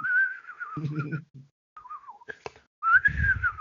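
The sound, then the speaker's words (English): Someone whistles a wavering, sliding tune in three short bursts separated by brief pauses, with some low breathy vocal sounds mixed in underneath. “And he whistles with his giant lips.”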